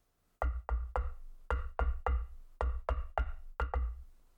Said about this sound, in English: They climbed three flights of stairs and saw a wooden door in the wall of the cave itself. Edgar knocked on it rhythmically.